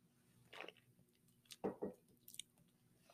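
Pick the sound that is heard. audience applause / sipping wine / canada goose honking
sipping wine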